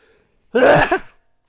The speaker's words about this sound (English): I'm going to sneeze, by the way.